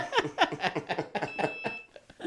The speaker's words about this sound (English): Here we go again. Fire alarm.